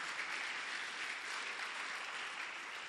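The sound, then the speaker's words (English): A crowd claps steadily for the Bible for about three seconds, a dense, even wash of many hands with no pauses and no voices over it. “Just clap for the Bible.”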